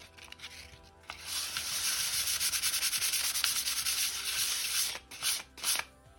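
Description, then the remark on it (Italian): Fine sandpaper of about 200 grit rubs steadily over a wall in quick back-and-forth strokes as a third finishing pass to remove imperfections before painting, a dry hissing scratch that runs continuously for several seconds before ending in a few short final swipes. “Possiamo utilizzare alla fine una carta vetrata a grana 200 più o meno.”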